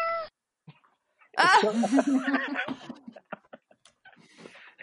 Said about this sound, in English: Wait, are those cats? Are cats by my window?